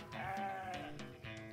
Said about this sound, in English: I'm a shepherd. I watch sheep. I'm good at it.